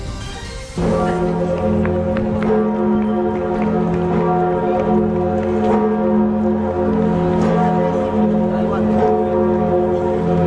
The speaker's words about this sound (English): To the mournful tolling of the Notre Dame Cathedral's greatest bell, we say good morning, Orlando, here at 6 o'clock.